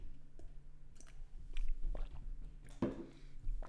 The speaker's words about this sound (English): Excuse me. I'm gonna take a sip of this orange juice real quick.